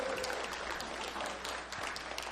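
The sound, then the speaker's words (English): A crowd at a church service claps steadily in a round of applause for the pastors, a dense wash of many hands clapping at once, sustained and fairly loud throughout without any voices standing out. “All right, give another round of applause for the pastors.”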